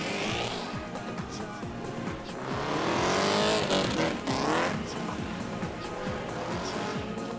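A drift car's engine screams at high revs, its pitch sweeping up and down as it nears and passes, loud and sustained with a rough roar and tire noise, no voices.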